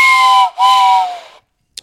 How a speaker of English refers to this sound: That train whistle keeps on giving.